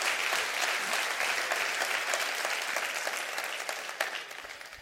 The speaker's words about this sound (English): Let's clap our hands and get happy a little bit here tonight. Let's get joyful tonight. Get joyful.